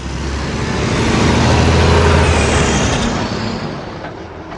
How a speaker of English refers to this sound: In the small town of Mount Storm, at the summit of what seemed like the highest mountain, I stopped to take a break and let a coal truck go by and watched an old man mowing his lawn.